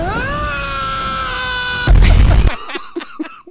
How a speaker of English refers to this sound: Is this deserving of a male scream? You might as well put that scream in there, babe. Male scream!